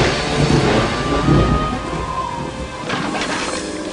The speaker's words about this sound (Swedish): Någon här har orsakat den här stormen.